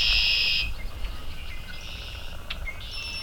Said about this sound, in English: These birds have had today, so they're out singing for that. Also hear a couple swamp sparrows ticking. This is one of the best times for hearing lots of marsh sounds is right after a morning rain.